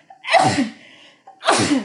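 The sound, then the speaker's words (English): Two loud sneezes about a second apart, each starting with a short sharp intake of breath before the explosive burst, with no talking. “Excuse me, I'm gonna sneeze.”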